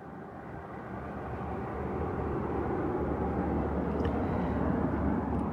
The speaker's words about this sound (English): And that silence, the silence that's the background against which you can hear the cars and the motors and the interference, the dissonance against the resonance of the water.